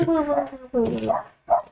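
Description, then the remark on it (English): Cooper, a dog, barks in three drawn-out, whining bursts, two longer ones followed by a short final yip, loud with nobody talking over it. “Cooper is barking in protest at this action.”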